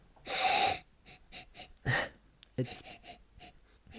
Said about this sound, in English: Now, I'm approaching the glass with my, now I'm starting to worry, hugely refined palate or nasal sense. Yeah. Okay, I'm going for a sniff.